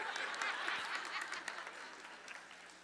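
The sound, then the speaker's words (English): Steady rain hisses and patters in a dense, even wash of droplets, holding at a constant moderate level for about three seconds with no voices over it. “Hear the rain? God agrees, okay?”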